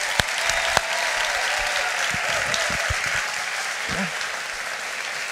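An audience applauds steadily for several seconds, a dense, even wash of clapping with a few sharper individual claps standing out early on.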